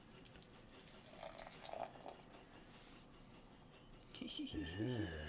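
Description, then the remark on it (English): Utah Brewing Buffalo Soldier Black Rye IPA, 7.6% alcohol by volume, glugs and splashes steadily from a can into a glass, with the pitch rising near the end as the glass fills. “And the pour.”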